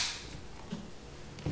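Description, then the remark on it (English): A single sharp clap at the very start, a bright snap that quickly fades, followed by quiet room hiss and a couple of faint low thumps. “Nice. Clap.”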